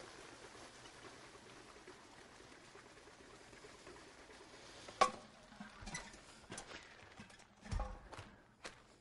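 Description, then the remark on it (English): Very cold liquid nitrogen, some 300 degrees below zero, is poured into a container with a steady hissing, bubbling rush, followed by a few sharp clinks and sputtering pops as the boiling settles. No talking. “So I'll take this liquid nitrogen, which is very cold.”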